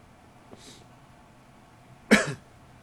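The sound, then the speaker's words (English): A single sharp cough bursts out near the end, preceded by a faint breathy sound earlier; otherwise quiet, with no talking. “Just counting for my cough.”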